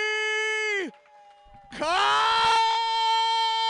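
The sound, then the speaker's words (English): A man lets out two long, loud, strained screams separated by a short pause, the second one rising sharply and held harsh and raw until the end. “That's what you want to do before you address a bunch of people is scream and blow your voice out.”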